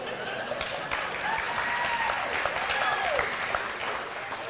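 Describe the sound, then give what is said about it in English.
An audience breaks into steady, dense applause that carries on throughout, with a few rising whistles and cheers cutting through the clapping. “I didn't get an applause or nothing.”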